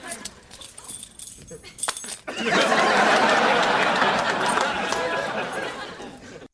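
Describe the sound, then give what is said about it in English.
A bunch of Mercedes car keys jangles and clinks for a couple of seconds as they are handed over, then a loud, sustained wash of crowd noise with chatter and laughter swells in and continues. “Take it. Here are the keys.”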